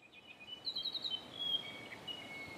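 A mohua (yellowhead), a bright yellow New Zealand songbird, sings a quick series of bright, high whistled notes in a short trill, fairly faint against a soft background hiss, with a few sustained tones trailing off.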